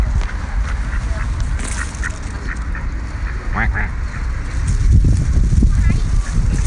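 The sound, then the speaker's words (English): A duck quacks in a series of short nasal calls on a golf course fairway, over a busy, rumbling outdoor background with some clattering and indistinct voices. “This duck here appears to have got a helmet on and a scoop. That's a duck talk.”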